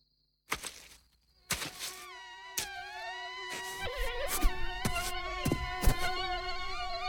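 Mosquitoes whine in a thin, high buzz, starting with a short burst, then droning steadily with wavering pitch, broken by several sharp slapping clicks.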